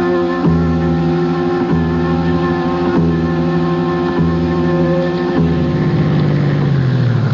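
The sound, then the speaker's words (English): A car engine runs loud with a steady, humming idle, shifting pitch slightly a few times before its tone sinks lower near the end as the driver turns the engine off while waiting. No one speaks. “I'm turning the engine off while I wait for you.”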